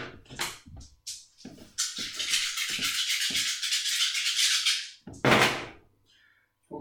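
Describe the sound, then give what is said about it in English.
A few sharp clicks, then a sustained, bright rattle of dice being shaken for about three seconds, ending in a final loud clatter as they are tossed. No one speaks. “So I get 2 4 dice, and then I get an additional die. So give me all the dice.”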